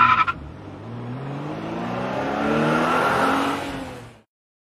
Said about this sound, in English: I love that car racing away.